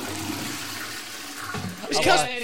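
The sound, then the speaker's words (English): A toilet flushes after urination, with a steady hiss of rushing water that swells into a louder, gurgling surge toward the end, all within a couple of seconds. “Funnily enough, that sound happens about seven times through the night to every single Cats player because they're all geriatric fucks.”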